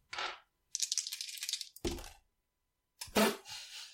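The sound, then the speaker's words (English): Two six-sided dice, rolled for a shooting check in a tabletop game, clatter and tumble across a hard surface: a quick knock, a rapid rattling roll, a sharp thud, then another clattering throw that settles, landing on double ones (snake eyes). Fairly loud, no talking. “I got double ones, snake eyes, for those who can't see this.”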